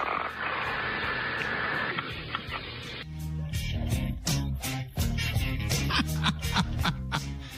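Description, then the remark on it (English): A loud, rough, buzzing snore from a coach sitting passed out rasps steadily for a few seconds, then cuts off as rhythmic music with sharp percussive hits takes over. “Coach is all passed out. Sitting there snoring, hanging out.”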